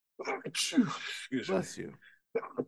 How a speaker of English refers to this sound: Bless you. Excuse me. Fun fact, I always sneeze twice. Never in my life have I ever sneezed just one single time.